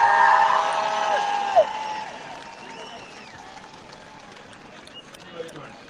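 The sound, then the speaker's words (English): A rally crowd cheering and clapping for Dr. Adele in a dense, steady roar, opening with a sustained shrill tone for about a second and a half before the cheers slowly settle to a lower level. “Let's hear it for Dr. Adele!”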